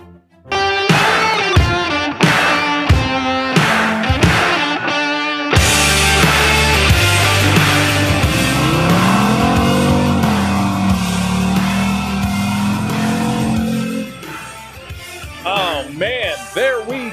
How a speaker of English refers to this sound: That car sound was from the Vault Stevens Wedding Burnouts. You got to have good burnouts at every wedding.